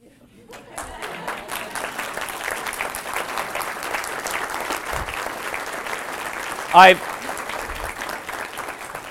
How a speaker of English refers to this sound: I've just spoken about pride and vanity, and he says, can we applaud? What am I? Please, right?